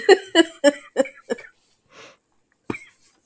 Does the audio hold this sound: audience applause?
no